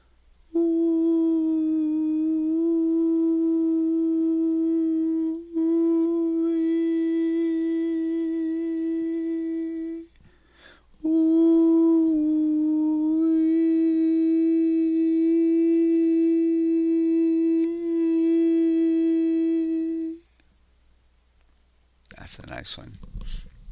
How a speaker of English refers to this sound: Now, listen for a frequency in your heart chakra. Get it humming consistently. Go up and down if you need to. Just imagine a sound vibrating there, full of love. Now make that out loud.